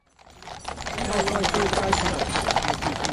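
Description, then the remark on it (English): Many horse hooves of the King's Troop Royal Horse Artillery, rehearsing in Windsor ahead of the funeral of Prince Philip, clip-clop on pavement in a dense, overlapping clatter that fades in and holds steady, with a faint murmur of voices underneath. “The King's Troop Royal Horse Artillery has been rehearsing all week in Windsor ahead of the funeral of Prince Philip.”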